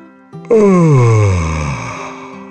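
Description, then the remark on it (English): A voice imitates a big, drawn-out dragon yawn as the dragon steps into its cave: a loud, breathy groan that slides steadily downward in pitch and slowly fades, with no words spoken. “Stepping into the cave, the dragon yawned.”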